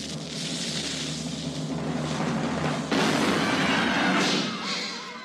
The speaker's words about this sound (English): Ryan, do you want to do the honors? Fire the cannon?